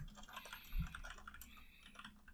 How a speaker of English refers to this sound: You and your mechanical keyboard. Yeah, man. It's loud.